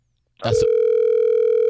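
A brief clatter of a phone being picked up, then a steady, loud telephone dial tone that hums on unbroken until the end, with no voices, as a call is placed on The Miguel Show on the radio station Hot 101.5.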